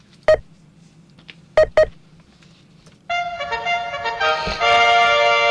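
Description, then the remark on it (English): Three sharp electronic beeps of a 5-second countdown ring out, one alone and then a quick pair, followed by a loud, sustained buzzing electronic tone that holds steady to the end. “Hear that? That's beep. The 5 second beep.”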